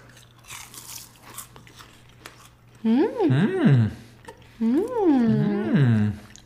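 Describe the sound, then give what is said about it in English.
A few faint, crisp crunches of someone biting into mini croissant cereal, then two drawn-out, expressive vocal sounds without words. “Crunchy, I like it.”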